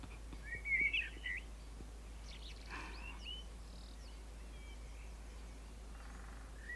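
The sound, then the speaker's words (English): Several short bird chirps and tweets ring out against a quiet, steady forest ambience, with a brighter burst of calls near the start and scattered fainter ones after. “Then, snap of a branch to your left, some birds flying away to your right.”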